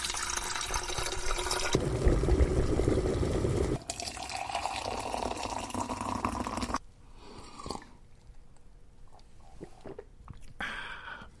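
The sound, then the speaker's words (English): Boiling hot water for brewing tea pours steadily from a kettle into a cup for several seconds, a loud rushing fill, then fades to quiet drips and small clinks of the cup. “So, Jim, I have a cup of boiling hot water in front of me.”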